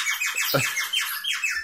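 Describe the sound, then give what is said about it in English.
A bird whistle blown by a trap drummer as a motion picture sound effect warbles rapidly, with a quick string of bright, downward-sliding chirps repeating nonstop. A brief low thump sounds partway through. “Maybe the most common one that you see in trap cases was the bird whistle.”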